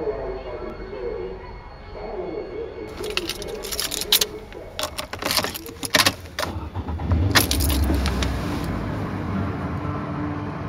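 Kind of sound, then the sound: vehicle, getting into a car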